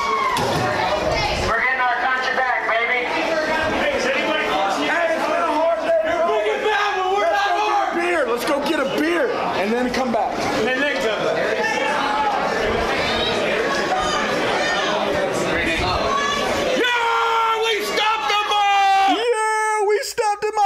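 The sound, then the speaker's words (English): A loud crowd shouts and yells at the police for about twenty seconds, many overlapping voices rising in agitated cries, with a few higher-pitched voices cutting through near the end. “Yeah, they're yelling at the cops.”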